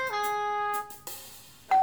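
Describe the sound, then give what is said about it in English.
A doorbell chimes with a ringing ding that lingers and fades, then a second bright tone strikes near the end. Clear, with no voices. “The doorbell rang.”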